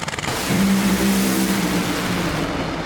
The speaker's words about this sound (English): Matt Hagen blows it up and will coast to a victory. The Funny Car, I believe, on fire down there is Matt Hagen in dramatic fashion, 4.328 seconds, 215 miles an hour, and he wins with a pyrotechnics displayed at the top end.